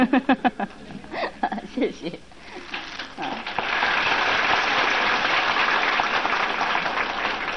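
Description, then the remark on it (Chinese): A crowd breaks into steady applause as the opening of a ceremony begins and a female fellow practitioner offers incense, flowers and fruit, the clapping swelling into a dense, even roar that continues to the end, preceded by a few seconds of scattered voices and chatter. “我们请那个师姐的话哈，献香花跟水果，请大家热烈的鼓掌。”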